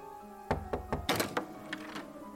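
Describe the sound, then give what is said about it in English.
A quick run of about seven solid knocks on a door, coming in an uneven, hurried rhythm, with no voices present. “Is there literally any point in reminding you that it's customary to wait for an answer after knocking?”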